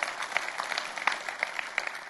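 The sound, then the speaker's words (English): A crowd applauds the good news of Jesus Christ, many hands clapping in a dense, continuous patter with a few sharper claps standing out, at moderate volume and with no voices. “You can clap for that. Not for me, but for that.”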